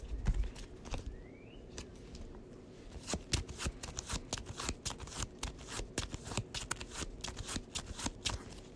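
Cards being shuffled during a card game, a card shuffled back into the deck: a dense run of quick riffling clicks and flutters that builds into steady rapid snapping, with no one speaking.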